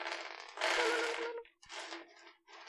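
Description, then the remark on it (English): Many dice clatter and rattle across a hard tabletop in a few quick bursts, a busy cascade of clicking that pauses briefly and resumes, moderately loud with no voices. Too many dice are rolled when a single d10 roll was asked for. “You always roll too many dice.”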